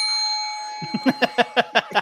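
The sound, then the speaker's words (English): A bell ding rings out clearly and lingers as a sustained, shimmering tone, then a quick run of about eight evenly spaced, punchy taps follows as the ring fades. “Thank you for the bell”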